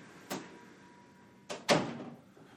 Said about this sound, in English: Something is making noise and I have to shut this door. Otherwise it's going to have an annoying noise in the background.